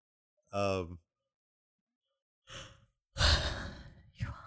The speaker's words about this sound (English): I'm tired. No, but... I'll yawn in the mic.